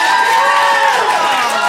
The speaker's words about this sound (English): So please, a round of applause for AI would make better friends.